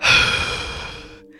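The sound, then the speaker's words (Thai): A single loud, heavy sigh made by a voice imitating a man's big exhale as he runs up panting. It is breathy, starts strong and trails off over about a second, with no words spoken. “แล้วพอจังหวะที่มันถอนหายใจดัง”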